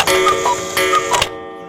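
A cuckoo clock ticks in a few sharp, uneven clicks over a sustained ringing, musical tone, fairly loud, then cuts off into near silence.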